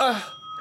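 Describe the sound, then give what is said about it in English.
A single bell rings out clear, its bright tone lingering as a steady hum after a brief, busier onset. Just one strike, with nothing else around it. “Like, did it feel, well, this is set up just to say, to use the bell, did it feel long to you?”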